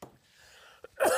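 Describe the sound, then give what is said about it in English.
A single sharp cough bursts out near the end after a quiet lead-in, loud with a harsh, breathy edge. “He coughs gaily.”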